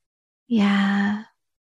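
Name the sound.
dog snoring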